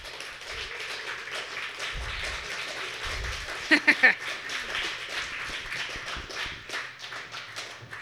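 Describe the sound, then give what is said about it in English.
An audience at the Dayton Poetry Slam applauds a co-host coming up to the mic, a dense crackle of many hands clapping at an even level throughout, with a few sharper, louder bursts about halfway through. “So keep applauding.”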